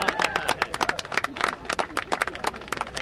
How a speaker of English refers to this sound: It's not a new dump truck they're cheering. It's taller and shinier than that. It's a brand new silver silo filled with 21 tons of corn sticking two stories up into the clear, cold sky.